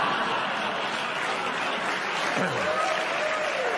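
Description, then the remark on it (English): Steady, dense applause from an audience, a continuous wash of many hands clapping at even loudness throughout, with no voices standing out. “Stop clapping.”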